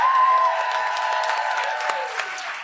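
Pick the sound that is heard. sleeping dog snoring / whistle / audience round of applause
audience round of applause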